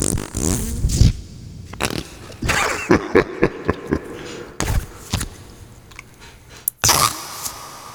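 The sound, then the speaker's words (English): FLARP noise putty being rubbed, giving off a series of irregular squelchy, fart-like sputters, some brief pops and a few longer wet blurts, fairly loud with short gaps between. “I tried to do this last show, but I couldn't get the FLARP warmed up.”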